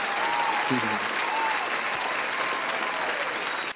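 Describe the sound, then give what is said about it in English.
Steady applause from a group fills the whole stretch, a dense even patter of clapping with a brief voice-like sound rising under it early on before the clapping cuts off sharply. “So what I'm going to do is give everyone an applause that have supported … and … towards their music career.”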